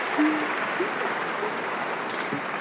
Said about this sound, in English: I promise there'll be a lot more to clap for this morning. It is my pleasure to welcome you to the amphitheater this morning.